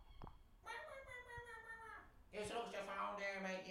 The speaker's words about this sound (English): You can hear the seagulls.